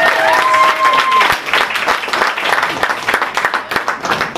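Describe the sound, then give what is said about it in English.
A crowd applauds loudly and steadily, a dense patter of many hands clapping for several seconds, with a brief whistle or cheer rising above it at the start. “Give them a big round of applause. Keep it going.”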